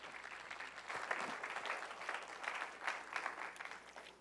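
A church audience applauds, a dense, steady patter of many hands clapping for about four seconds with no voices over it.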